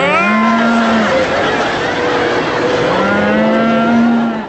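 Two drawn-out cow moos, one at the start and one near the end, ring over a loud, continuous rumbling roar like a herd stampeding.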